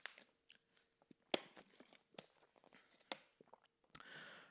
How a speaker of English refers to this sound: Okay, let me just drink some water while I'm at it.